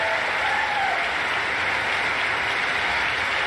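Dense, steady applause from many hands in a chamber, including Marjorie Taylor Greene clapping, after the announcement that the first bill will repeal funding for 87,000 new IRS agents; a loud continuous wash of clapping with no pauses and no clear voices above it.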